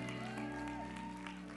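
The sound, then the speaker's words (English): Audience applause for the band, a steady wash of clapping throughout, fairly faint, with sustained musical tones humming underneath. “Let's give the band a round of applause.”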